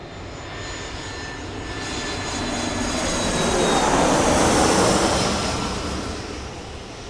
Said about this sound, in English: So grab your passports and pack your bags because we're leaving on a jet plane to Buenos Aires, Argentina.